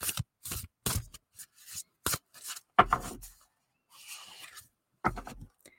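A deck of music oracle cards being shuffled, a series of quick papery riffles and soft slaps in uneven bursts, with a louder, longer riffle in the middle and no voices.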